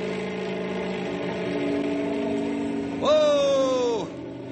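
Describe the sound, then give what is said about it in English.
A steady droning helicopter engine hums for a few seconds, then is revved up for better stability to a louder, higher-pitched whine for about a second before dropping back down. “I'm going to have to rev it up for better stability.”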